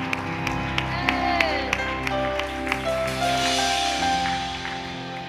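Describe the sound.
Scattered audience hand clapping, a handful of sharp claps at an irregular pace, heard over sustained keyboard-like musical tones and a faint murmur of voices.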